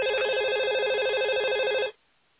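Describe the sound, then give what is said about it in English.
A telephone rings at midnight with a steady, rapidly warbling electronic trill, loud, for about two seconds before cutting off abruptly into near silence. “Reluctantly, he reaches for the phone.”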